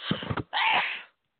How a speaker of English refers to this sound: Oh, boy, excuse me. I think I'm about to sneeze. Hold on.